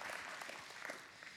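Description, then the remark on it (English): A crowd claps steadily, dense overlapping hand claps forming a continuous wash of applause, with no voices standing out. “And yes, yeah, we got claps for that one.”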